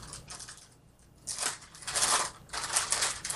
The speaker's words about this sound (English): I'm unwrapping a cough drop.